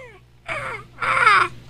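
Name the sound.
voice imitating seagull calls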